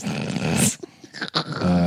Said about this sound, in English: Wow, that was bold. Very bold. I'm not sure what's more bold, the fart or that you would record it and then email it to us. I think the fart. The fart. That sounded like there was more than a little bit.